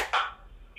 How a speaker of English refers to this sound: Okay. So what we're gonna do is we're gonna clap on the count of three. You ready? You're gonna clap, right? No, we're both gonna clap. You're gonna clap on your end, I'm gonna clap on my end. On the count of three, you ready?